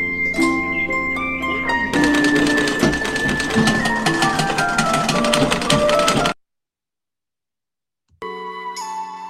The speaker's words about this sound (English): So now she's on her sewing machine. And she's using the old school thing where you gotta like crank it with your foot too.